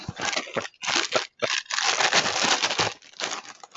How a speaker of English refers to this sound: So make sure you can hear this. I'll put it up toward the mic, but I'm going to open up the box of Lucky Charms-inspired Lucky Charms.